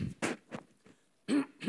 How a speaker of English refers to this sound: Hard when the microphone is taped to your face to do anything about the cough.